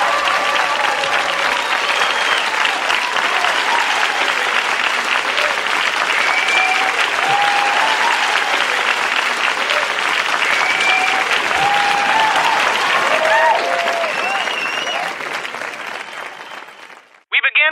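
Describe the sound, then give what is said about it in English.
Sustained applause from a large audience as the candidates are introduced at a debate, a dense steady clatter of clapping with a few cheers mixed in, holding loud for about fourteen seconds before fading out. “Oh, and don't applause and stuff. Except for right now, ladies and gentlemen, your candidates.”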